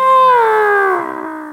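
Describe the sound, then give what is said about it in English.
Someone vocally imitates a siren passing by, a single sustained wail whose pitch slides steadily downward like a Doppler shift, loud at first and tapering off with a slight wavering at the end. “So it sounds like a siren coming from behind you. But you're booking it, so like the Doppler effect is in full effect here, and it's going like...”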